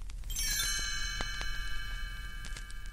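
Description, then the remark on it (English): A cluster of bright chimes rings out together as a page-turn cue for following along in a book, their clear metallic tones shimmering and sustaining as they slowly fade, with a few light tinkling taps scattered through the decay. “You'll know it's time to turn the page when you hear the chimes ring like this.”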